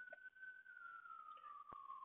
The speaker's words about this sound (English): So look at that. I'm recording this right now and there's like a ambulance in the background. So I pardon me for that little interruption.